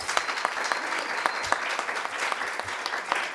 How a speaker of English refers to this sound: So we wanted to give a round of applause for our first responder.